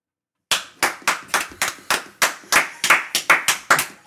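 A quick series of about a dozen sharp, loud plastic pops from a squeezed water bottle, coming in a fairly steady, slightly uneven rhythm with no talking.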